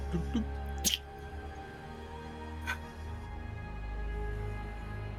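Quiet sounds of liquid being poured: a couple of brief splashing drips, then a soft, steady trickle over a low background hum, with no one talking.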